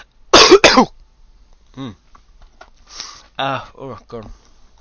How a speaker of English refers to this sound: Tell you what, the cough I've had for 6 weeks has been abating and it's starting to come back, and that's not a good thing.